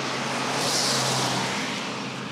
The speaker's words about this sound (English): Car's going a bit fast.